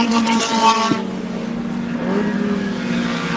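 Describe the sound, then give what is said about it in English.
Race car engines roar loudly and steadily around a track, a buzzing harmonic drone that drops and then climbs in pitch as the cars come down through the dogleg and power away, the leader pulling about five car lengths clear. “as they come down through the dogleg, and it is now opened up big time between Jacobs and Jordan”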